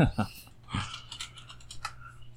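Quick, irregular clacking of keys on a computer keyboard, moderately loud, with a steady low hum underneath and no one speaking.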